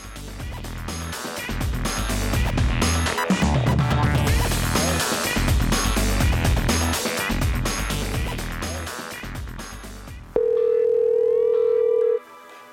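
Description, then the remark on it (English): Dense, busy music plays for about ten seconds, then cuts to a loud, steady telephone tone held for roughly two seconds as a call is placed to Sean Lowe in Dallas. No one speaks. “So let's call Sean Lowe in Dallas.”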